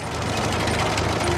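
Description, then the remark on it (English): An orange crawler tractor, Terence, clanks and rattles its caterpillar tracks in a steady, continuous mechanical clatter over a low droning engine rumble, fairly loud throughout with no voices. “Terence is an orange crawler tractor who has caterpillar tracks instead of wheels.”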